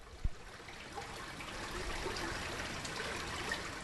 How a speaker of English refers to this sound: That's true, and the brook running through there. Oh, that, just hearing that sound,